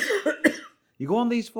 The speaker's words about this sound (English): I'm going to fucking cough in a minute. Fuck me.